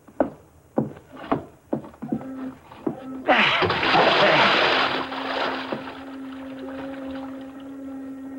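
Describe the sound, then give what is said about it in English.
A few slow, heavy thuds, then a loud splash as a man's body is dropped from the edge of a pier into the water of a bay, churning and washing on for several seconds before settling under a steady low hum. “I'm going to carry him to the edge of the pier and drop him over the side.”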